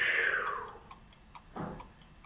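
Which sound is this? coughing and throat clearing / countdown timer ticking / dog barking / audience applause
countdown timer ticking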